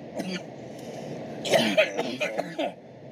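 A harsh coughing fit after smoking a cigarette: a quiet throaty sound first, then a rapid burst of five or six rough, raspy coughs in quick succession before it trails off.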